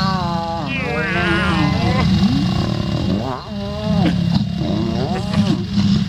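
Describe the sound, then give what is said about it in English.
Loud lion growls and roaring snarls during mating, rising and falling in rough, drawn-out bursts over a deep rumbling undertone, repeating several times without pause. “Out of nowhere, lion mating is shooting to the top of my favorite animal mating noises this morning.”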